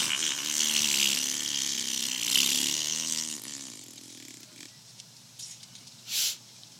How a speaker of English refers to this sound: Then, he rips a massive fart.